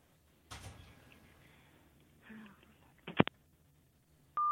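A few rustling handling noises and sharp clicks, then a loud steady electronic telephone tone starts and holds to the end: telephone keypad dialing tones on a phone.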